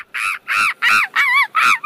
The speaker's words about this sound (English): Always love listening to that monkey screaming. Always nice.